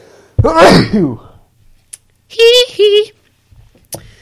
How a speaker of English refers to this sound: Uh-oh, there's a sneeze coming. Hold on.